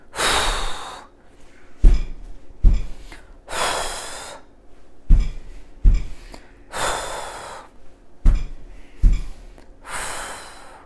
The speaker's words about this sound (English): And so you can go stomp, stomp, blow. Let's do it one more time together. Stomp, stomp, blow.